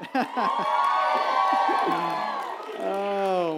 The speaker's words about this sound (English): And so, yep, that's worthy of a little clap.